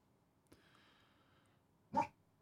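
A dog lets out a brief yelp followed by a faint, drawn-out whine, then one sharp, loud bark. No one speaks.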